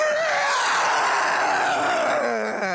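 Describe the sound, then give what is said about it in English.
Several girls, totally unprepared, scream together as someone suddenly charges at them, loud, sustained, overlapping shrieks lasting a few seconds, high-pitched, with no talking around them. “The girls, totally unprepared, scream.”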